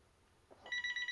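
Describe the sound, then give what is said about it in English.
A telephone starts ringing partway through, a bright electronic trill with rapid pulsing tones that rises out of near silence and stays steady and fairly loud until the end. “Get the phone. That's Blizzard calling me right now, saying, why are you bashing us?”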